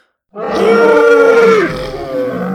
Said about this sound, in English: Suddenly, a little red dinosaur with yellow stripes jumped up onto the boulder behind Dr. Rex and let out a roar.